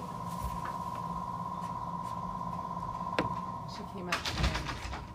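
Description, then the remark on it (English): A door is pulled shut: one sharp knock, then a short burst of clattering thuds a second later, all over a steady electrical hum and faint background murmur. “Close the door, please, then.”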